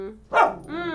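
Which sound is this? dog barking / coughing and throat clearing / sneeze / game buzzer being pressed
dog barking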